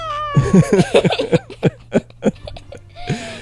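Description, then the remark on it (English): A person does a vocal imitation of a cat's meow, a drawn-out falling cry at the start, followed by choppy breathy bursts like laughter and a shorter meow-like call near the end. “I thought you made a cat sound when you did that.”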